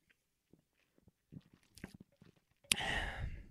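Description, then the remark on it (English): Sipping a drink: faint clicks and wet mouth sounds, a few quick gulps, then a sudden loud, breathy exhale that trails off, like a satisfied sigh after a drink. “Let me take a sip.”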